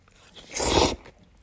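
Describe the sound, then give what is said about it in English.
One brief, loud slurp of noodles being eaten in an Asian household, a wet, noisy burst lasting under half a second against near silence, with no one talking. “You're in an Asian household, babe, and we're eating noodles, so you better slurp, girl, because it tastes so much better if you do.”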